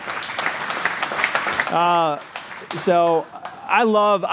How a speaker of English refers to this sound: Give a big round of applause for Stuart doing that.